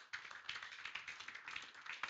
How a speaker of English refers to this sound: Give God a clap of faith.